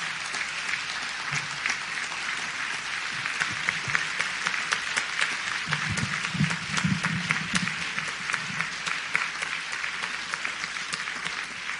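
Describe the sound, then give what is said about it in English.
A crowd applauds steadily for scholarship recipients and graduates of St. Paul Baptist Church, a dense wash of many hands clapping at an even level, with a faint murmur of voices underneath near the middle. “Can we please have one more round of applause for all of our scholarship recipients, as well as all of our graduates of St.”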